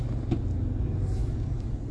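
A small car struggles to get down a snowy road, rumbling steadily with a low engine drone and road noise, continuous throughout with no voices.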